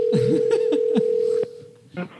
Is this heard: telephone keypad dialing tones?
yes